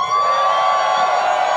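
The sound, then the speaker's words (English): A live audience at the start of a Hip Hop Saving My Life live show screams and cheers in one loud, sustained roar of high-pitched shrieks and whoops that holds steady without a break for the whole moment. “Ladies and gentlemen, if you are ready for the start of the show, I need to hear you scream.”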